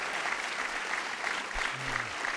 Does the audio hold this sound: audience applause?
yes